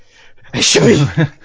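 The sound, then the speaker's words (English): A single loud sneeze bursts out with a sharp breathy onset and a voiced tail, followed by a brief vocal catch, in otherwise quiet surroundings. “Bless you.”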